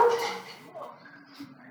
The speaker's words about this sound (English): It's a prophetic bark right there.